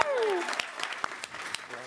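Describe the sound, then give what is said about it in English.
Scattered hand claps from a few people, sharp and irregular, follow a brief falling vocal sound at the start; the clapping stays moderate and sparse rather than building into full applause. “Somebody would clap.”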